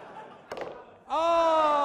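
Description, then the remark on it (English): A ball flies off the table and clatters onto the floor with a single quick thud, followed moments later by a loud, drawn-out vocal exclamation. “The ball flew off the table like one of those jets that comes over Edinburgh every day and scares the shit out of everyone.”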